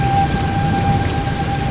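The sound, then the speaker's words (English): Heavy rain from a thunderstorm pours steadily with a dense, roaring hiss and a deep low rumble underneath, loud throughout, with a faint steady tone running in the background and no voices. “The intensity of the storm is what I find so fascinating.”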